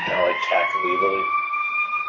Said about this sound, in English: Oh, you guys can hear the sirens, right? Yeah, yeah, pretty loud.